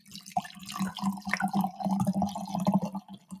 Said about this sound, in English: Yeah, so Taylor's husband, Curtis, loved the sound of our wine pour. How did you get such a professional-sounding pour? I was like... Literally, we're pouring wine.